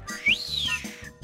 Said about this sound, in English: Wolf Whistle.